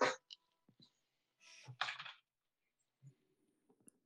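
A keyboard gets knocked about: a few sharp clicks, then a louder clattering thump with rattling keys, and a couple of faint taps afterward, with no talking.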